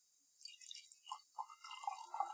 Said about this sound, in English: Tall glasses. I'm going to have to use a lot of whiskey to fill this.